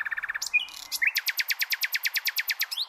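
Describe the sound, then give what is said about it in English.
A nightingale sings at dusk: a quick stuttering phrase, a few whistled and buzzy notes, then a long rapid run of loud, evenly spaced chirps repeated in a steady rhythm, with no voices. “Nightingales, who arrive back in Britain from their African summer around April, are in the grip of a sharp decline.”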